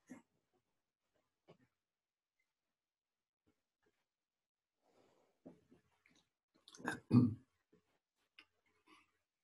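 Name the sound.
sipping water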